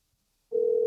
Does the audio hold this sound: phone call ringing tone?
yes